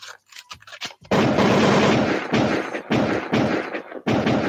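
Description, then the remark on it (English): A rapid barrage of loud gunfire, bursts of shots pounding almost continuously for several seconds with brief gaps between volleys, after a few sharp isolated cracks at the start. “Sometimes we don't need to have an actual complaint about the thing other than stop doing it and then gunshots.”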